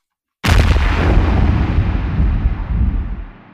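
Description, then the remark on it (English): A loud explosion sound effect bursts in suddenly after a brief silence, then rumbles on with a deep, crackling roar that slowly fades over a few seconds. “Red Scare is going to take this one with an explosion.”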